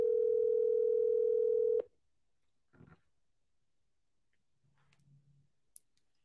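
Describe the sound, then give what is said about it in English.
A loud, steady telephone ringback tone sounds once for about two seconds, then cuts off, leaving near silence with a few faint clicks and a soft low hum. “Can you answer your phone?”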